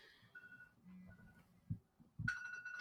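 A phone calendar reminder alert, reminding that a recording starts in 10 minutes, sounds: a bright, steady electronic tone rising suddenly near the end after a couple of soft thumps, with fainter beeping tones earlier. No one speaks.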